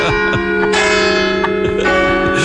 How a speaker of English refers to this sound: I bet you Big Ben wasn't as beautiful, I bet you Big Ben's bells weren't as beautiful as these bells. Aren't they the most beautiful sounding bells in the world?